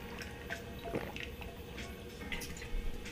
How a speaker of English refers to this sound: I need to take a drink of water. Maybe that'll help alleviate my munchies a bit.